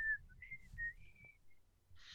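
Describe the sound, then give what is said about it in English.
A person whistles a short melodic tune, the pitch sliding and stepping between notes, clear, with a low background rumble and a brief breathy hiss at the end. “That's some good whistling right there.”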